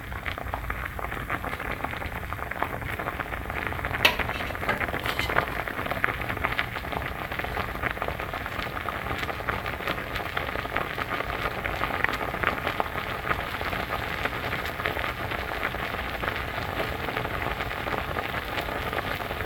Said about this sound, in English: That was Oatmeal Cooking